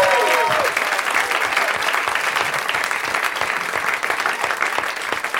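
An audience claps steadily, a dense wash of many hands sustained at a fairly loud, even level for several seconds, with a brief cheer or whoop at the start, welcoming the fourth guest, Nelson Franklin.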